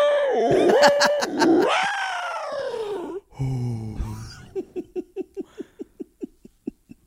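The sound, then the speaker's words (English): An eerie, otherworldly NASA sonification of a black hole in space: wavering, sliding tones rise and fall like a moan, then drop into a low rumble before a steady series of short, evenly spaced pulses. “I love that when they do the things, the recordings of like a black hole.”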